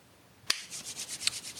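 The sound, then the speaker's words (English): Two sharp, quiet hand claps separated by a brisk, rhythmic rubbing of palms together, a soft hissy swishing repeated several times, done to warm cold hands. No one speaks. “No, I'm just clapping because my hands are fucking cold.”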